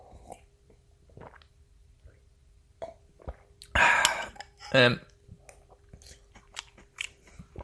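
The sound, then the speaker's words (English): Mouth sounds of someone biting and chewing a crunchy island of Milo powder floating on milk, with two louder bursts of crunching in the middle amid quieter smacks and clicks, no talking. “Let's have a little taste of the milk and maybe a little taste of the crunchy island.”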